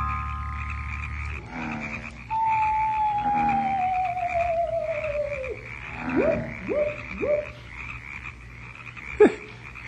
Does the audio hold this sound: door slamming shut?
no